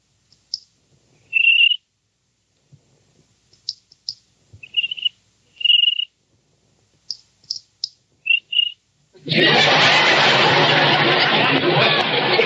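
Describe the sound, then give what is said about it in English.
Short, high-pitched cricket chirps come in small patterned bursts over near silence, almost like a tapped rhythm, before a sudden loud, dense wash of noise takes over at the end. “How do you like that? A cricket with rhythm.”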